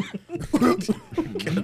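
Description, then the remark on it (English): A person imitates a raspy old man's cough, a few rough, phlegmy bursts in quick succession, loud, with a chuckling edge. “It's like that old man cough.”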